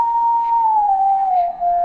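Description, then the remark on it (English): A single long whistled note, clear, sliding slowly downward in pitch for about two seconds, with faint low thumps underneath and no voices, part of a children's song. “You'll hear toy pianos, tambourines, clapping, whistling.”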